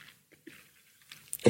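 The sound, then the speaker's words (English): A pet chews and gnaws on a trainer shoe lying on the floor, with sparse soft crunches and clicks of biting, quiet at first, then a sudden louder burst at the end. “Chewing my shoes again, are you?”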